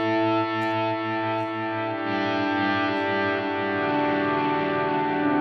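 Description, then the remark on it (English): A guitar played through two Strymon pedals, a Timeline delay and a Big Sky reverb, swells into a thick, sustained wash of layered tones, with notes blurring and repeating into one another at a steady, fairly loud level, with no voices. “the timeline, particularly the two Strymons together, the timeline and the Big Sky. Big Sky. A great name. There's their reverb, and the two combined do quite a similar thing, but they just allow you to do all of this live with your feet.”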